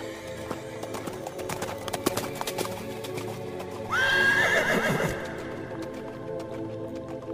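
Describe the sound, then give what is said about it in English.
Hooves clop in a steady rhythm, then a horse lets out a loud, quavering whinny that rises and trails off before the clopping carries on. “By the gods! That horse.”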